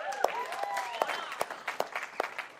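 An audience breaks into applause, a spread of scattered claps with sharper individual hand slaps standing out, along with a few high cheering voices, at fairly low volume.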